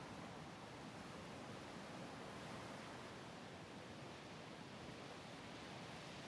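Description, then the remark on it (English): A steady, soft wash of ocean surf fills the scene, a continuous hiss of water along the shore with no distinct breaking swells and no voices. “Let the peaceful rhythm of the waves and flowing waters wash through you.”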